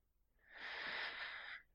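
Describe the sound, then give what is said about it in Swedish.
A woman takes a single long, deep breath, airy, swelling in and trailing off over about a second, heard alone against near silence. “Ta djupa andetag.”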